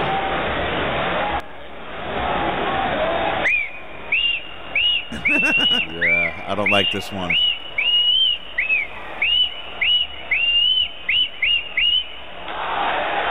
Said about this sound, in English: That's just a random dude whistling the tune.